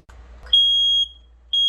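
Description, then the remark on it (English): A smoke detector alarm beeps loudly, a sustained shrill tone that sounds for half a second, pauses briefly, then starts again, after a moment of low background noise. “These sounds are proven to save lives. Working smoke detectors should be on every floor and in every sleeping space.”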